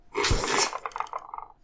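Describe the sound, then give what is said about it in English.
A single dull thump as a foot knocks into a table, followed by a brief scatter of faint rattling that quickly fades out. “I just kicked the table.”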